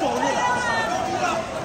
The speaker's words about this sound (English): Okay, so we figured it out. There's scalpers, and now there's a big crowd yelling things.